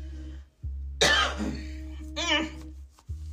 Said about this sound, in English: It's just a dry cough, y'all. Just a dry cough.